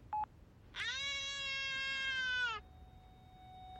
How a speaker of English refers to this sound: What the fuck is that? Whose fucking baby is that?